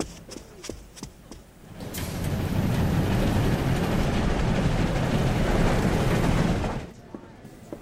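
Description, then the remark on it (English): A few sharp clicks, then the loud, steady roar and rattle of train cars rolling over the tracks, heard passing through the vestibule at the back of a train's dining car, fills the space for several seconds before cutting off abruptly, as if a door closed. “Quickly through the vestibule at the back of the dining car.”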